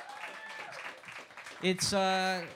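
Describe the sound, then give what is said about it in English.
An audience applauds and cheers for the opening comedians, a dense wash of clapping under excited shouts, with one loud sustained whoop rising over the crowd near the end. “And a huge round of applause as well for our opening comedians”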